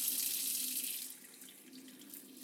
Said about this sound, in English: So what I'm going to do here is make a freezer of sorts, or a cooler at least, out of my kitchen sink. I'm filling up my kitchen sink now with cold water.